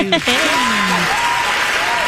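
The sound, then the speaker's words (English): A large crowd applauds at a fair, a loud, steady wash of clapping that fills the whole clip, with a voice briefly calling out over it near the start. “Wow, you have a really big crowd out there at the fair.”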